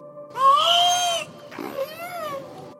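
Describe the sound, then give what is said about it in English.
A killer whale named Wiki imitates human speech with two squeaky, nasal, voice-like utterances: a loud rising-then-level call, a brief pause, then a softer, wavering second phrase. “She's the first killer whale ever to be recorded imitating human speech.”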